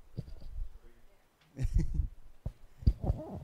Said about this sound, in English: A dog.